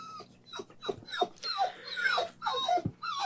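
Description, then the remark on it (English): A female pet dog whimpers and yips on command to speak into a microphone, in a string of short, high-pitched, wavering cries, some rising into squeaky whines, fairly quiet throughout with no talking. “Speak. Right in the microphone.”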